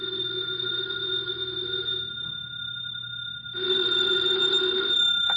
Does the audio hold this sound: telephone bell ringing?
yes